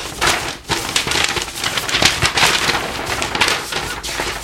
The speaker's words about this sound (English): I'm gonna pull off this report here. Okay. Let me flip through this and find the score.